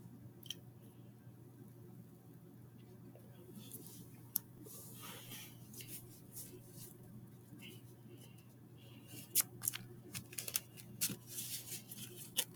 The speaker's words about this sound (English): Alright, I'm almost finished shuffling poorly with the cigarette in my hand.